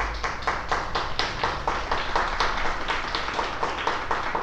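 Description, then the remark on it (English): A crowd applauds steadily for a woman who organized a web services event for the second year in a row, many hands clapping in a dense, continuous patter with rapid overlapping claps and no break or fade across the stretch. “I think we owe her an applause for this.”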